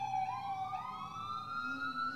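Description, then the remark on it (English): A fire truck siren wails steadily with a rising, sweeping tone as it goes by a studio, accompanied by low traffic rumble. “Fire truck, sorry. I should have known the difference.”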